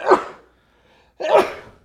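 A person sneezes twice, close and loud: two sharp, breathy bursts separated by a brief quiet pause, with no talking.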